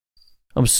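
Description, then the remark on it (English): A brief, thin, high-pitched chirp from a single cricket in an office sounds faintly, then a louder, harsher burst of noise follows; the whole thing lasts under a second, with no talking. “Do you even cricket, bro? There's nobody.”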